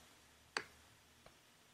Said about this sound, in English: I am clicking on somebody's question to answer.